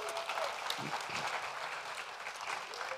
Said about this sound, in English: We had over 20 people that served at the Westrand concession stand and also the Moberly High School concession stand on Friday, so you could give them a great big hand clap.